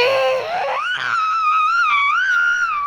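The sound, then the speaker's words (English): A child's voice imitates a loud tractor seen at the park cutting down very thin trees, with a sustained, high, screaming wail that rises in pitch, then holds steady and wavers slightly for about three seconds without a break. “Stop making the screaming sound. Yeah, that's how loud it was.”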